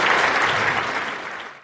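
An audience of city and business leaders in a room in Carroll claps together for Dave Bruner, who is being recognized for his work with the committee for the baseball tournament. The dense, steady burst of applause holds at an even level, then cuts off abruptly. No voices stand out over the clapping.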